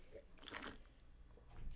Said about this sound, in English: I'm just going to take a sip of this real quick.